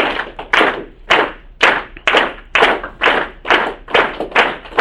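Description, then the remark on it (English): An audience, asked to clap at a steady pace of about one clap every half second, claps in a steady, even rhythm of about two claps per second, each loud, sharp burst landing together with the rest, with no talking. “I want you to focus on clapping at a steady pace, not the usual kind of applause, but give me steady claps, about, you know, one every half a second, something like that.”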